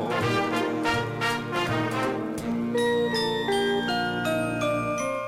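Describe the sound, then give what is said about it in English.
Bells ring out loudly in a steady rhythm of bright strikes, then give way to layered, sustained chiming tones that hang and overlap. No one speaks. “I hear bells ringing.”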